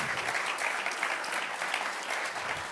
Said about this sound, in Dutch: Laten we die persoon een applaus geven.